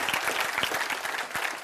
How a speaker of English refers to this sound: Praise the Lord. Y'all need to clap your hands. That's right.